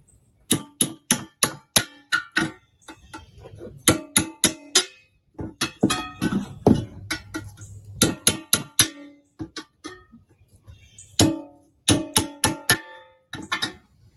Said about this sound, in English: And we're poking holes in them. So poke holes in the bottom for drainage and then poking holes down the side. Super easy. Nail, hammer.